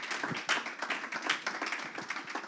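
A crowd applauds steadily, many hands clapping in a dense, even wash of bright claps with a few sharper slaps standing out, sustained at a fairly loud level throughout.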